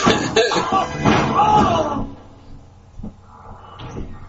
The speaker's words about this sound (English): Look at the door swinging both ways.